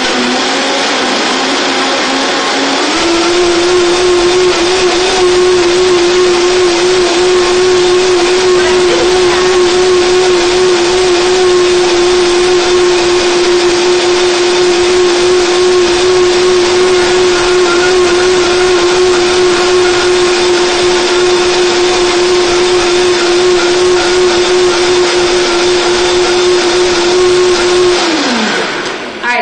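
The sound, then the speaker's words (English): A blender blending an anti-inflammatory smoothie whirs to life after a brief pause and runs loud and steady for about twenty-five seconds, its motor holding a constant high hum before winding down. “If I can get my blender on.”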